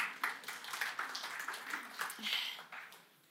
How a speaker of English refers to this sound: Good job. You can give yourselves a little clap for that. Well done.